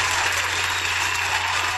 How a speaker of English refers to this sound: Hold on, let the people stop cheering.